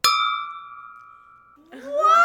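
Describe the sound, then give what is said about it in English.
A single bright clink of glasses holding no alcohol rings out clearly and sustains for over a second, a clear bell-like tone slowly fading before an excited voice breaks in. “I've never known what a glass that doesn't have alcohol it sounds like.”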